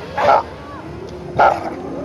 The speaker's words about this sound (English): And then I heard one of the dogs reply. Watch. Watch. I couldn't trust my ears. I promise you, it was something between a bark and human words.